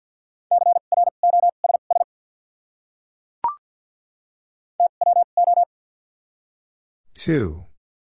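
Fast Morse code beeps at 50 words per minute with doubled character spacing, sending common words. The beeps are at one steady mid pitch, sent in two quick bursts separated by a pause and a brief click, then a short falling swoosh at the end. No one speaks.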